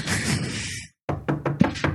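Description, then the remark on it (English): A burst of rushing noise fades to a brief silence, then about five sharp knocks land in quick, slightly uneven succession, loud and solid against nothing else. The knocking stands for the first incidents of a reported haunting, on 31 August 1977. “All right, so the first incidents were knocking on...”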